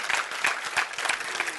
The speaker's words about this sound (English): You ought to be clapping your hands right there.